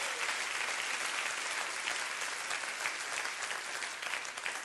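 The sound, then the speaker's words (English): A church audience claps hands together in sustained, dense applause, a steady loud wash of many overlapping claps with no talking. “Clap your hands right now all over the house.”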